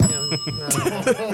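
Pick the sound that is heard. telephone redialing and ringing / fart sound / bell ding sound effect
bell ding sound effect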